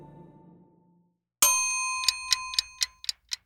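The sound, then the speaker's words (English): A bright, ringing ding sounds, then a clock-style timer set to 1,000 seconds starts ticking in quick, steady clicks while the chime fades beneath them. The effect is clear, with no talking. “Let's put 1,000 seconds on the clock.”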